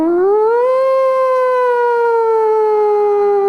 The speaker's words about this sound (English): I was just they were a great band. Song starts off with a siren. It's so creative.